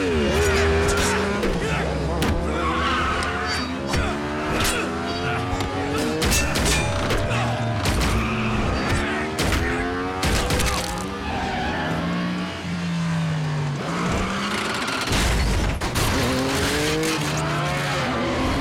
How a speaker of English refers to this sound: the motorcycles become the music because they're constantly shifting gears